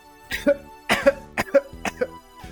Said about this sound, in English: Start coughing